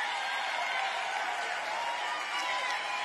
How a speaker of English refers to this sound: And she's making an obscene gesture right now. And the crowd is cheering.